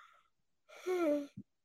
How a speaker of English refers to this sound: Excuse me, I'm so sorry for yawning. Y'all, we're on the East Coast, so it's like after 1 a.m. here for us.